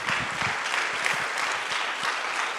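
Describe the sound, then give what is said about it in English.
Audience applause from a crowd of students and leaders at a camp, clapping for their camp leaders: a dense, steady wash of many hands clapping at once, holding an even loudness from start to finish with no voices. “Can you clap it up for them?”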